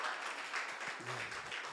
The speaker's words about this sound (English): So the series that we're kind of stepping into, that we're wading into as we approach the one-year anniversary of our church next Sunday. I thought you might clap for that.